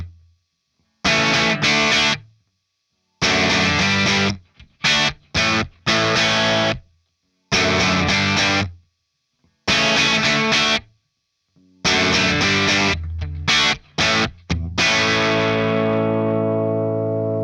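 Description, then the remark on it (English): An electric guitar riff played with the Storm pedal turned off: loud, gritty chord bursts in a stop-start rhythm with short silences between, ending on a long ringing chord that slowly fades. No voices. “Example two, I'm going to turn the Storm off and we're going to listen to a different riff.”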